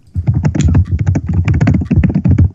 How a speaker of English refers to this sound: Lightning rounds? No, these are just normal rounds, but you'd kind of, based on the way the keyboards are being bashed, you'd think it was a lightning round.